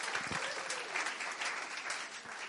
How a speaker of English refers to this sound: We give him a big round of applause.